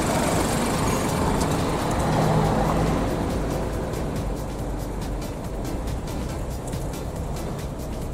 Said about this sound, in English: Hey, look, little guy in a car. Vroom, vroom.